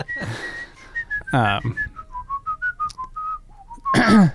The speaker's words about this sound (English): No one can hear it. Yes, they can. Well, now they can hear it because you're whistling it.